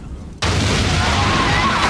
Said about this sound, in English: Those of you listening to that very loud explosion, I did not mean to play.